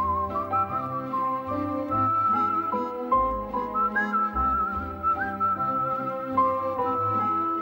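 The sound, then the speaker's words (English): A bright whistled melody from a film soundtrack glides and sustains over a full instrumental backing with a steady low bass, clear and prominent throughout, with no voices. “Like the whistles that.”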